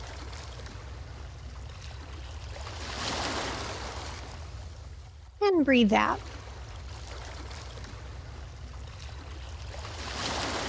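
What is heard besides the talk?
ocean waves washing ashore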